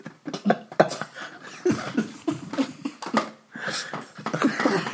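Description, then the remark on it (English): A person coughs hard and repeatedly in a string of harsh, gagging bursts with ragged breaths between them, choking after swallowing some weed. “just coughed up a hairball.”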